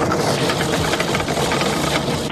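Loud, steady mechanical grinding like an ice machine crushing ice, a harsh whirring rumble with a fast, rattling pulse that keeps going without a break. No one speaks.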